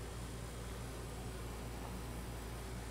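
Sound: air conditioner running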